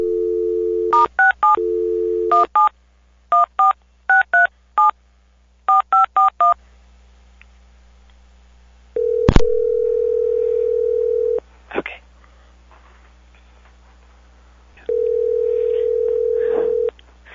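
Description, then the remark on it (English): A phone dial tone gives way to a quick series of touch-tone dialing beeps, then a sharp click and long, steady ringback tones as the call rings on the other end. “I'm going to click over, and when I come back, the phone will be ringing, and I'll be silent.”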